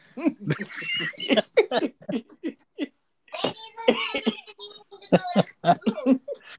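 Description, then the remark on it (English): Two loud fits of harsh, rapid coughing, separated by a brief pause, with choppy bursts that edge toward laughter. “Coughing up some pumpkins over there.”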